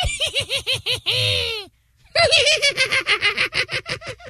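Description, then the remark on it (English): A person imitates a witch's cackle: rapid, high-pitched rhythmic bursts of laughter, a drawn-out wavering shriek, a brief pause, then another long run of loud staccato cackling. “Give me your best witch's cackle.”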